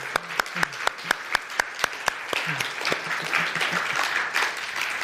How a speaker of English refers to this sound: If you're a youth leader, could you stand up and get there right down here? They are awesome. Let's clap for them. They are so good.